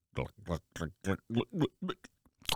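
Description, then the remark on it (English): A voice imitates crunching and chewing: a quick run of about eight rhythmic, mouthy syllables, fairly loud, ending in a short sharp burst. “With a crunch and a crack and a nom nom nom nom.”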